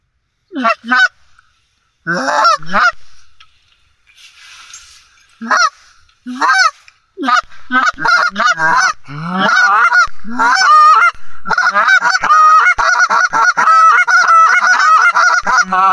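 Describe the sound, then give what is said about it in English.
A goose honks loudly, starting with scattered bursts and building into a long, continuous run of harsh, rapid honking calls. “Goofy goose.”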